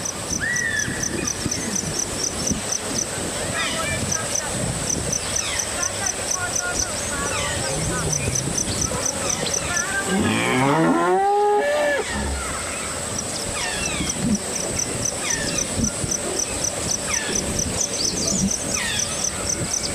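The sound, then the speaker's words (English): An Indian rhinoceros (Rhinoceros unicornis) in Kasuranga National Park, Assam, India, gives a brief burst of wavering, squealing honks midway through, set against a steady pulsing insect chorus and scattered bird calls throughout. “And hear the sound of Rhinoceros unicornis at home in the Kasuranga National Park in India.”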